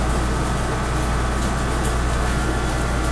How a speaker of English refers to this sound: Never mind the air conditioning in the back.